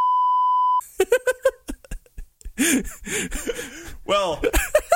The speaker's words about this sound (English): I'm going to put a loud beep sound here, like a sensor sound.